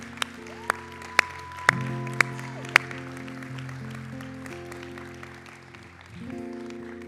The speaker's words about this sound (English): Where are my seniors at? Stand. Yes. Stand. Yeah, that's right. We can clap for them.